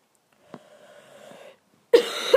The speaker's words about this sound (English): Sorry for the coughing, I'm currently ill at the moment.